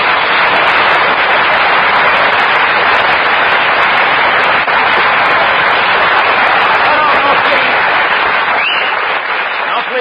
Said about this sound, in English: No applause, no applause. The listeners will think we have a studio audience.